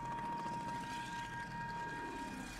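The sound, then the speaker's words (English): A steady, low engine drone of aircraft overhead, continuous and fairly loud, with a thin sustained tonal whine riding above the broad rumble and no talking. “There are planes overhead. Do you hear them?”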